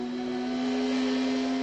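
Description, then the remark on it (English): A motor runs steadily, giving off a constant low-pitched hum with a whirring, hissy noise above it, unchanging in pitch and loudness for under two seconds. No one speaks. “Progress is the sound of a motor,”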